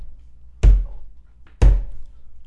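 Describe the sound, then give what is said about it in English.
Two heavy, hollow knocks on a door, about a second apart, each ringing out briefly with an echo, with no voices present. “you knock upon the door and it echoes throughout the sewer.”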